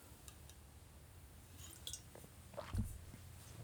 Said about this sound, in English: I'm just going to have some water.